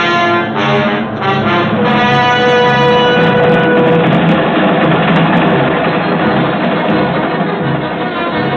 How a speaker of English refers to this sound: A subway train, Midtown, New York.